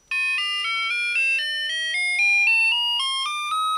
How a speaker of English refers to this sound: This was Casio's smallest synthesizer, and even though it looks like a calculator, it actually had a full range of musical tones and notes. So let's go ahead and first hear the range of notes that this thing plays.